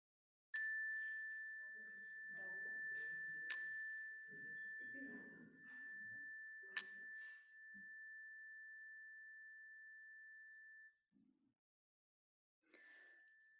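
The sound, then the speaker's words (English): A bell-like chime is struck three times at slow, even intervals during a prayer, each tone ringing out and fading, with faint murmured voices softly speaking beneath it before a last light tap. “And as the chime rings, I invite you to speak them aloud so that we can hold them with you.”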